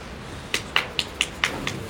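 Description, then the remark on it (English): Audience clapping in a steady, fairly quick rhythm, with about seven sharp claps at moderate volume and a slight echo, and no voices. “Why are you clapping?”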